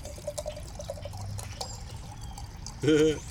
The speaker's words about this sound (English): Pouring water.